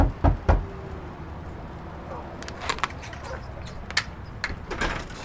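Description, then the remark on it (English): Two quick, solid knocks on a door, then scattered clicks and rattles as the door is opened and shut. “You can come in and close the door.”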